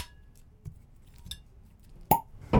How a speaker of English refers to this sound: And with that, let's open some rosé. So yes. Let me go get that bottle. All right, yeah, we're going to open this bottle.